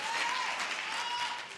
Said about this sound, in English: Come on, clap your hands and take your seats.